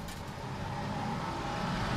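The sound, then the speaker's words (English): A number 15 city bus drives along on a cold Friday morning, heading into the university, with a steady engine rumble and road noise, holding an even level throughout the short stretch. “Catch the number 15 bus, like singer …. It'll take you straight there.”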